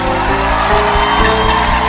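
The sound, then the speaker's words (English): A church audience claps their hands for Jesus in loud, dense, continuous applause, with scattered whoops and shouts of cheering mixed in, holding steady throughout. “Why don't they give Jesus your best hand clap?”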